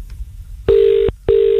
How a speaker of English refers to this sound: I'm just going to hit dial, okay?